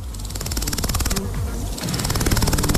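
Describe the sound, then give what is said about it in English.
A grasshopper buzzes in a rapid, steady rhythmic rattle of fast pulses, fairly loud, continuing without pause for the whole few seconds with no voices. “Here's a grasshopper.”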